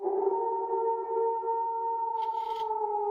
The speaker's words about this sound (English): And it seems like it continues to follow you at least until you get to the road, at which point you can hear a howl.